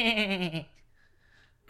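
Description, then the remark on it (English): A person imitates a goat with one loud, quavering bleat lasting about half a second, its pitch wobbling rapidly before it cuts off into near silence. “Would sound like some functified goat being jerked off. That is exactly what I did. That was my impersonation.”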